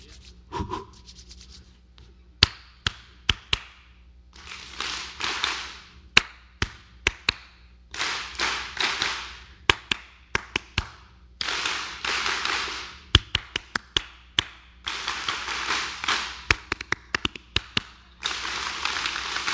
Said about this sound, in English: That kind of sounded like an applause. Thank you. Thank you. Thank you.